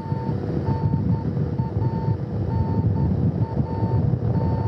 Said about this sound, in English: You can hear the sound of the radio beacon on the Soyuz spacecraft. Very audible and very clearly heard by the search and recovery forces.